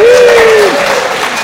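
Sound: studio audience applause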